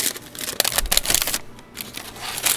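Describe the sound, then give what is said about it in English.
A paper bag of fries crinkles in irregular, crackly bursts, easing briefly partway through before rustling again, with no one talking. “That was actually quieter than paper.”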